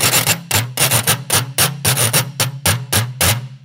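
A metal whisk scrapes across the wavy and spiral crimps of a washboard played as a percussion instrument, in about a dozen quick, even strokes, each a loud, bright rasp with a ringing metallic undertone. No voices are heard.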